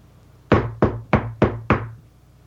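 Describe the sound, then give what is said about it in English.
Five firm knocks on a door in a steady, evenly spaced rhythm, fairly loud, each with a short woody thud and quick decay over a faint low hum. “Open that freaking door, because it's me. Knock again?”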